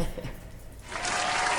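An audience at a band's live performance bursts into loud, dense applause and cheering after a song, a steady wash of clapping that swells in after a quieter, murky opening and keeps going to the end.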